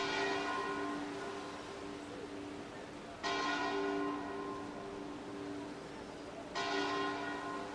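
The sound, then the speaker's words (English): A deep church bell tolls three times at slow, even intervals, each strike ringing out with rich overtones and a long, lingering decay before the next. “It's kind of compelling, and whenever you have a lost village under sea, you have bells that toll, always.”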